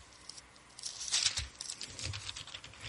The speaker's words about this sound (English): I don't know if you can hear the pages turning, but I am turning. It's beautiful to see the Word of God front, back, and just flow all through your fingers.